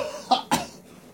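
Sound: coughing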